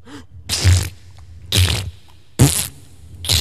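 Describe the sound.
Four wet, blustery fart noises blown with the mouth, each a short raspberry burst about a second apart, loud with no talking.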